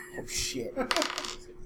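A quick clatter of eleven dice tumbling and knocking together on a table, two short bursts of rattling, with faint talk in the background.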